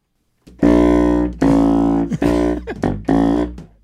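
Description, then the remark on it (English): A huge contrabass saxophone plays a short run of loud, buzzy low notes, four or five sustained tones with brief breaks and small pitch dips between them, with no talking over it. “Guys, I didn't know this was real, but what Greg was talking about is called a contrabass saxophone. That big giant one.”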